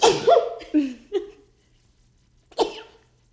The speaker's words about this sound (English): Ew. I'm going to sneeze.